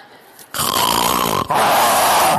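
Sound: lion roar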